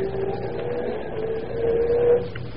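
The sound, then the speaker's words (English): A car engine hums steadily, then swells louder as the car, brought round by Denny, pulls away, its rumbling drone rising in pitch before easing off at the end. No voices are heard. “Here comes Denny with my car now.”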